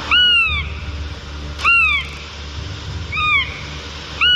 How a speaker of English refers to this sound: The northern goshawk makes a couple of different sounds. One is a kind of plaintive wail, like this.